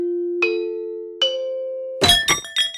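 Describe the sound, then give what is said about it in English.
Bells ring with no voices: two single strikes over a steady, humming tone, then three quick, louder clanging hits that leave bright metallic overtones ringing. “Let's talk about bells some more.”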